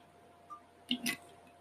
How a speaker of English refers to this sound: So, sorry, let me take a sip.